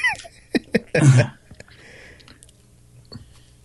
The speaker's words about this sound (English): He's chewing right now, so give him time.